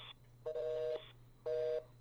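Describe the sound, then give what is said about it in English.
A telephone busy signal: two steady electronic tone pulses, each about half a second, separated by a brief pause, preceded by a short high dialing beep. The sound is clear over a low background hum. “Oh, they're busy.”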